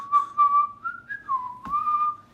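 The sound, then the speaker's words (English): A man whistles a cheerful Jingle Bells melody as he walks down a snow-covered street, clear, with several sustained notes gliding up and down over a couple of seconds, no talking. “And he walks, down the street, down the snow-covered street, kind of whistling jingle bells on his way.”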